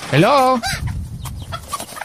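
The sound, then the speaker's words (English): A chicken lets out a loud, drawn-out squawking cluck, followed by a shorter cluck, then fades into faint background rustling. “Chicken, settle down, chicken.”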